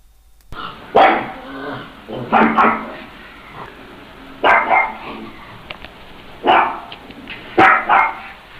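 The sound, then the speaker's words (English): A dog barks in short bursts, about five or six in all, some paired together with brief pauses between, fairly loud with a slightly muffled, band-limited quality. “What a very profound thing for a dog to say.”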